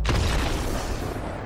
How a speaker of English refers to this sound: Is there going to be a theme song for What Killed Magic This Week? It's probably just going to be an explosion.